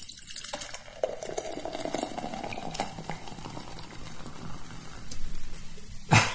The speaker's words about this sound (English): Ice club soda.